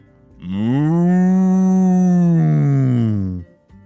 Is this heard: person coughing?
no